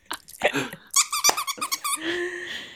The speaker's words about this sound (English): This might be one of the cutest squeakies we've ever had. It's Finding Nemo. Dog toy. Yeah. It's adorable. Oh, little Finding Nemo.